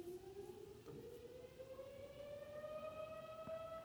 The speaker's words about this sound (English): Oh, wait. I still have a siren behind me.